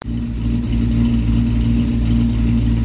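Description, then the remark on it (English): The engine of a 1957 Buick Special turns over and settles into a loud, steady low rumble with an even throb and no voices. “The car has started. That 1957 Buick Special has started.”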